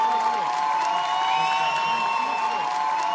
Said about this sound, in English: pulls a long, shiny ponytail onto her shoulder, and the crowd begins to cheer.